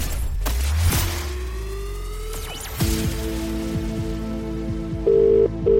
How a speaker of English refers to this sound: One ring. Two rings. Three rings.